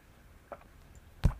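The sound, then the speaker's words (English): Someone drinking water: a faint sip, a short pause, then a louder gulp or clunk. No talking, just quiet room tone between the sounds. “Excuse me for some drink water here.”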